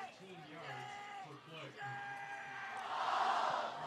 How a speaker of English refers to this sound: And the Golden Eagles cheer section is really trying to get their players into it